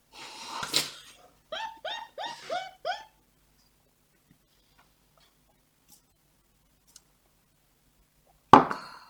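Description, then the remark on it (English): A quick clink, then four rapid, rhythmic gulping swallows as people chug beer from glasses, followed by quiet and a sharp knock like a glass set down on a table. “Pounding those beers.”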